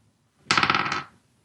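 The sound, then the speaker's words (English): A quick rattle of dice tumbling across a hard tabletop, a half-second burst of rapid clicks and clatters that settles into silence. No one speaks. “Roll the right dice this time. There we go.”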